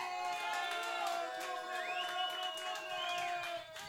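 A comedy show audience claps and cheers steadily for a comic, with dense rapid applause filling the whole stretch and a few rising whoops and shouts riding on top, easing off slightly at the end.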